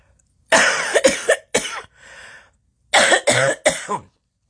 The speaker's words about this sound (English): And I'm sorry, I'm about to cough.